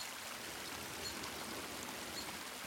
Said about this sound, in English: It's surrounded by a rocky overhang where a small waterfall streams down onto slabs of limestone. The rush of the water is just forceful enough to produce a cloud of mist where it meets the surface of the rocks below.